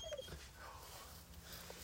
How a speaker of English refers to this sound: We're literally in the blind duck hunting. Quiet. My dog won't shut up.